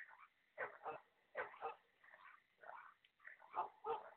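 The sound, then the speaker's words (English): A dog barks and yips repeatedly, often in quick pairs, with short pauses between bursts. The sound is thin and tinny, as if played through a small speaker, and no one talks. “It's dog sounds.”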